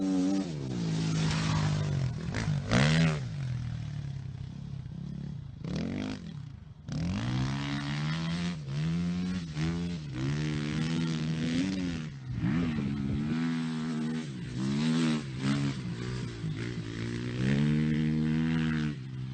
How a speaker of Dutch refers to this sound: We zagen net al op de motor, daar hebben we ook nog wat rijbeelden van. Die komen hier.